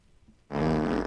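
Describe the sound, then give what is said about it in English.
A sudden, loud fart-like squeak of stretching pleather pants from Zara as the wearer does a deep knee bend: one buzzy, sustained blurt lasting about half a second, after a moment of near silence. “And they make a fart noise when you squat.”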